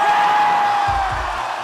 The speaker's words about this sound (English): I've here elected to play for you the live version of the song, with all of its foot stomping and audience cheering.